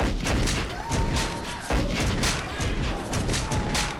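A loud, sustained volley of musket gunfire from a Mughal ship as pirates try to board it, with dense overlapping cracks and heavy booming thuds rolling together into a continuous barrage that barely lets up.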